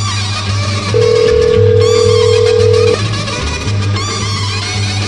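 A single steady ringback tone from an outgoing phone call sounds for about two seconds, loud and clear above a constant backdrop of music and low hum; no one speaks.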